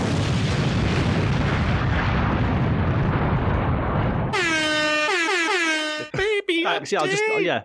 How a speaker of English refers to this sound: I don't know if you want to fill in that bit with some explosions and air horns, but we do have a baby update.